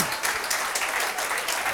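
Steady applause from an audience, a dense crackle of many hands clapping at an even loudness, with no voices over it.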